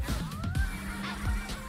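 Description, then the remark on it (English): A few short, nasal duck honks ring out in quick succession over a steady electronic hum, fairly loud, with no one speaking. “I can't get over that duck, dude.”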